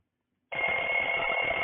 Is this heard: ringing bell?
yes